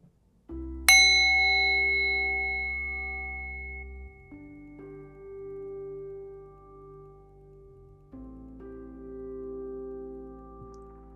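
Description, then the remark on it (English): A single meditation bell is struck once to begin a meditation practice and rings out with a long, shimmering decay over a soft, sustained low drone that shifts pitch a couple of times. No voices are present. “We'll begin our practice listening to the sound of the bell.”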